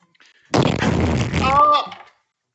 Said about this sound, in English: I suggest you go put your three mouths in front of the cannon nozzle and we will fire again.